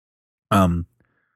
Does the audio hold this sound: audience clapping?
no